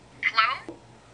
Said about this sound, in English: Hello? It's coming from a cell phone.